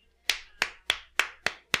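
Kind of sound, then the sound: human body sound, hand clapping applause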